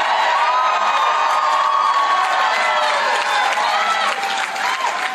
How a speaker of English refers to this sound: Republicans are cheering. I mean, they're just eating this shit up.